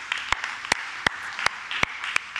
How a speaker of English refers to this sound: Come on, big round of applause.